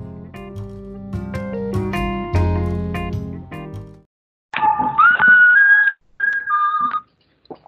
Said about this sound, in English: Your phone goes off and it's your good, the bad, the ugly ring.